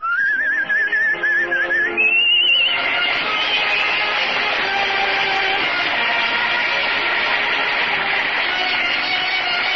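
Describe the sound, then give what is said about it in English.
A person whistles a short, wavering tune of a song they wrote for a couple of seconds, then a dense, steady wash of noisy sound takes over and continues to the end. “I better whistle it.”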